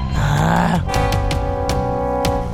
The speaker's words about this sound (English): Sorry, I burped.